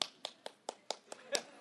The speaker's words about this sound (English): You can clap. It's all right to clap. You know, there's two kinds of clapping. What we used to call English drawing room clapping.